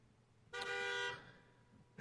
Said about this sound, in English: I think that was an inadvertent beep of the horn. That was my kids.